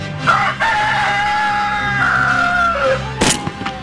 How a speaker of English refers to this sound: Not in the mood for the rooster. A little too early for that. A little too early for the rooster.